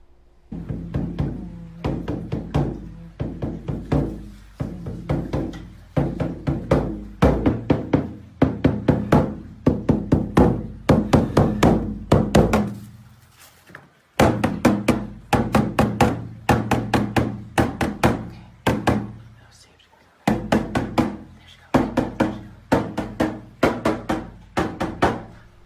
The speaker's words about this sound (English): So I'm just picturing this total hippie chick in Oregon playing bongos to see if she can get the mountain lion to leave her house.